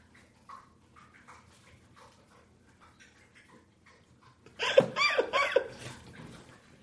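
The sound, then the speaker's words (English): A female pet, Ursula, laps drinking water with quick, wet, rhythmic slurps that start softly and grow to a loud burst of rapid splashy laps near the end. “Yeah, she's just thirsty. I want to see how long she'll drink water.”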